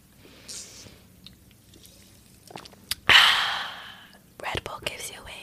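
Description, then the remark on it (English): Someone sips a Red Bull energy drink: a few soft mouth and drip-like sounds, then a sudden loud fizzy slurp that trails off, followed by quieter sipping noises. Nobody talks. “But let me sip some Red Bull.”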